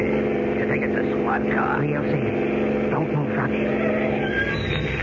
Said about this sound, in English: Yes, it is a squad car. Look, it stopped right in front of Powers' house.